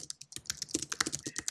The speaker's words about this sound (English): Wait, hang on. I'm typing loudly. Oh my gosh. Oh, I guess I could mute.